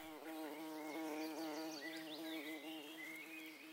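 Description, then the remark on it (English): A steady buzzing of bumblebees in a flower garden, with a rich, harmonic drone that wavers slightly in pitch, with faint birdsong chirps in the background. “Bumblebees are buzzing.”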